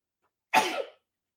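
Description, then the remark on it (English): A single sharp sneeze bursts out, a quick explosive rush of breath lasting under half a second, with silence before and after. “Bless you.”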